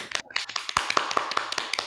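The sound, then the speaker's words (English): A group of people, told to clap once together on a count of three, clap in a ragged, uneven scatter rather than together: a couple of dozen sharp, bright hand claps overlap irregularly over about two seconds, with no talking. “One single clap.”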